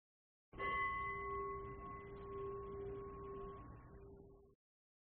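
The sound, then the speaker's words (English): A single strike of a meditation bell, struck to end a meditation, rings out clearly, its pure, layered tones sustaining and slowly fading over about four seconds with no voices present. “And when you're tired of meditating or whatever, meditating or whatever, hit unpause, and we'll be here to hit the bell to end the meditation or whatever.”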